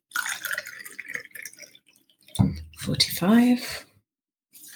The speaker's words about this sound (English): 45. Pour that over the ice in the cocktail shaker. And then 45 again. Pour that over the ice in the cocktail shaker.